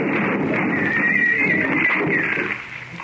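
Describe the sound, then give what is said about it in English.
A horse's wavering, high-pitched whinny rises and falls for a couple of seconds over a loud, steady rushing noise that fades slightly at the end, as wagon horses tear loose from their traces and bolt. No one speaks. “The horses tore loose from their traces and bolted, and the Slovaks scatter”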